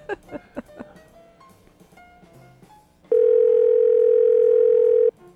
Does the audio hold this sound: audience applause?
no